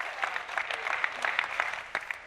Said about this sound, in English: Can we just clap for everyone here that's here for the first time? Come on, really clap. Let them know that you're happy they're here.